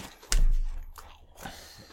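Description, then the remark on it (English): A loud, crisp crunch of a bagged pork snack being bitten, followed by a softer second crunch of chewing, with no voices. “Elevate your crunch to a higher level of crunch and take your crunch to the next level.”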